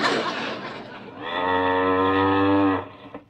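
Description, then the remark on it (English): A cow gives one long, loud moo, starting with a rough, breathy rush before settling into a steady, low, droning bellow that fades out at the end. “Let's see now. Where can that cow be?”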